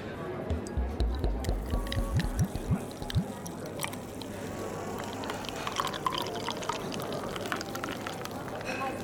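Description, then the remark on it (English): Adnams beer, brewed in Suffolk, glugs into a glass, its pitch rising quickly as the glass fills over a few seconds, then stops, leaving a steady murmur of indistinct voices and clinking in the background. “Give me a beer. Something local.”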